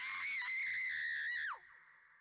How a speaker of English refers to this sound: Excuse me while I go scream into the void.